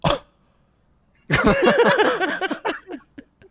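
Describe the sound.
A voice imitates a long, wet fart with the mouth: a loud, sputtering blast with a wobbling buzz that breaks into a few short puffs at the end, preceded by a brief burst.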